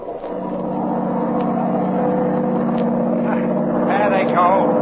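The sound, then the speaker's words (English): A steady, droning motorboat engine runs continuously, its low hum constant throughout, with a few faint clicks and brief voice-like sounds layered on top. “Shut off that engine!”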